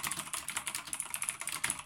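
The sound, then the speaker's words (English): Rapid typing on a computer keyboard while practicing to type faster, a steady patter of crisp key clicks in quick succession with no voices. “I actually started of something very new that I didn't really talk about in the previous podcast, and it is typing faster.”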